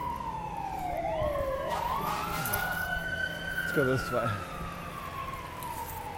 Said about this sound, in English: There's probably not a fire, but there's probably maybe somebody who is, somebody might be injured. Maybe somebody was shot. It is three fire trucks and a paramedic truck.